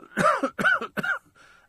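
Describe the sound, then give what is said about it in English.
Three quick coughs in a row, each a sharp, rasping burst, followed by a faint breathy trailing sound as they die away. “If you're just doing music, you can cough in between your music links.”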